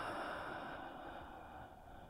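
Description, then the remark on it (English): A single long, soft breath, in through the nostrils and out through the mouth, airy and steady, fading slightly toward the end, with no talking. “As we breathe in, we can feel it go through our nostrils, into our lungs, and out through our mouths.”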